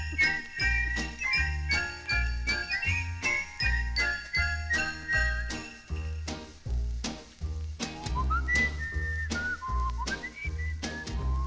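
A Christmas song recording plays, with a bright whistled melody gliding over a steady bouncing bass beat and jingling bell accents, loud and continuous with no talking.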